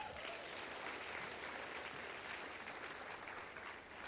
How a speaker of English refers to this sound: Clap for my guys.